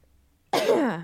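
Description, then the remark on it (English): A single cough bursts out after a brief silence, loud, with a harsh start that trails off into a rough, voiced tail lasting about half a second. “Coughing.”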